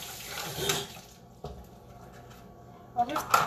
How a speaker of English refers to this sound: Well, you guys can probably hear me washing the dishes. Clink, clink.